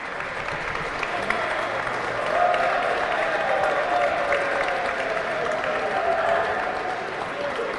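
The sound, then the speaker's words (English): A large audience claps loudly and steadily for several seconds for offensive lineman Ted Karras, a dense, sustained wash of applause with a murmur of crowd voices mixed in. “Give Ted a huge round of applause, please.”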